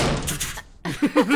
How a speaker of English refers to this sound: Shut the door.